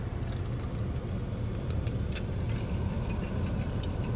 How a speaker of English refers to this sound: Yeah, I turned my fucking car on. Okay, don't judge me. I'm cold.